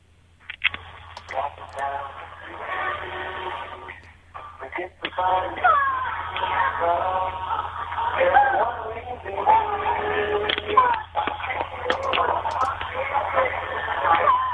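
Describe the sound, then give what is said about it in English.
An alternate version of the Monkey TV theme song, played by a caller to a radio phone-in show, plays continuously, its sung melody and backing sounding thin and tinny, as if heard over a telephone line or small radio, at a steady moderate level. “Well, I found a different version of it.”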